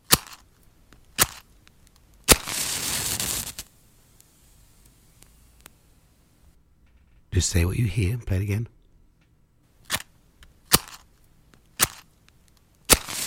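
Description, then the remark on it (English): A match is struck with a sharp scrape, flaring into a short hiss; several more quick, crisp strikes follow at irregular intervals, with a brief spoken voice in between. “Yeah, striking a match.”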